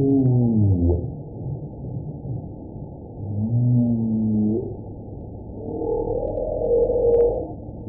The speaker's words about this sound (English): One of the things about whale song that researchers want to understand better is why the very complicated songs of the humpback whale in particular change over time.